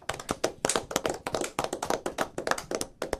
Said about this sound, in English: He's in the building. Clap it up